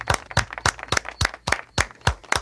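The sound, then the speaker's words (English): Audience claps ring out in a steady, even rhythm, about nine sharp loud claps over a couple of seconds, with no voices over them. “All right, let's clap for him because...”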